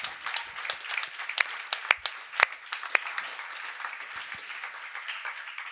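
An audience applauds steadily, dense overlapping hand claps forming a continuous crackling wash with a few sharper individual claps standing out, sustained at moderate level throughout with no voices.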